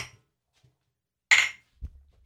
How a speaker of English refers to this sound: Clink. Oh, wait, we're not doing that anymore, right? Clink, clink, clink.